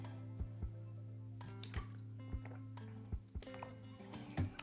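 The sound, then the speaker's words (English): Loud gulps as someone drinks water, a series of six or seven wet swallowing thumps at an uneven pace over a steady low hum, with no talking. “I know I drink loud.”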